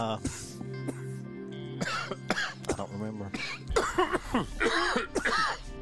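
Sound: coughing and throat clearing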